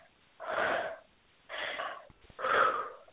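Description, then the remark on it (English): Three loud breaths with no talking during a standing breathing exercise: a deep inhale and forceful exhales, each a breathy rush lasting about half a second, separated by short pauses. “So making sure you're taking deep breaths and expelling powerfully.”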